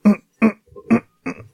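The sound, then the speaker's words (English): Four short, muffled cough bursts from a woman trying to hold a cough in instead of turning away, coming in a steady rhythm, each voiced and throaty behind closed lips, with soft grunting catches between them and no talking. “She's trying to hold a cough in instead of just turning away and coughing, and you just hear that.”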